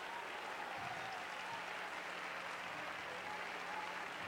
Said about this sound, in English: It's okay to clap your hands. It's okay to shout hallelujah.